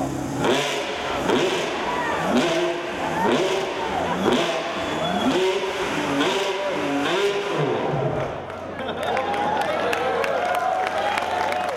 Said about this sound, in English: Pininfarina that blends design cues from Ferrari's 60s Le Mans racers and modern technology using an Enzo chassis and engine. The crowd was thrilled to finally see the new car in the flesh, and even more delighted to hear it run.